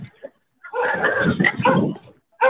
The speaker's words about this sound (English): Now more dogs bark at me.